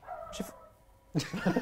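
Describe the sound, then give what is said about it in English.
A dog lets out a thin whine, then after a short pause breaks into a few quick, loud barks at the end. No one speaks. “What was that? That was scrappy. It was a dog.”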